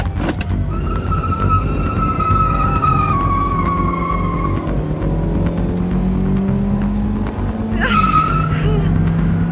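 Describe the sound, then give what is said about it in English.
A car engine roars and revs at speed while tires squeal and skid in drawn-out, rising and falling screeches, with a sharp final screech near the end. “All I could do was drive.”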